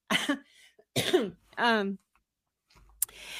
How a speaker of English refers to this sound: we both got that little cough. Mine's almost better. Oh, yeah. Yours is just starting.